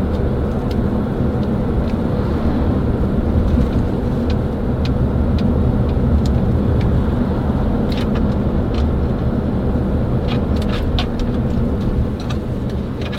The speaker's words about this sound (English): Well, there's sort of a lot of traffic today. Well, we're almost there.